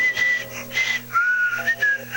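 A thin, high nasal whistle through the nostrils, sliding between a few sustained notes in a short tune, one of the compositions on a two-volume CD collection of nostril whistling, fairly loud with no talking.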